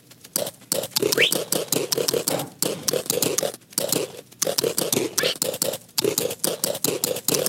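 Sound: repeated computer mouse clicking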